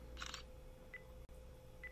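A quick camera shutter click from a small wearable device as it takes a picture of a phone, crisp, followed by two faint electronic beeps spaced apart over a low steady hum; no one speaks.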